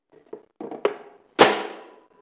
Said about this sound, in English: And you think of sin and the results of sin more like taking this vase and taking a hammer to it, right?